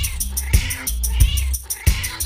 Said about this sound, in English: I meow when time to wake you.